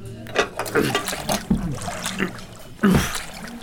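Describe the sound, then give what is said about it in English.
Water sloshes and splashes inside an aquarium full of water as it is hoisted onto a table, with irregular surges and slaps. The sloshing is moderately loud, with a few strained grunts or effort noises mixed in. “Could you help me lift this aquarium full of water onto the table”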